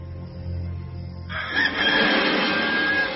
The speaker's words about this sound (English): And at once, a rooster crowed.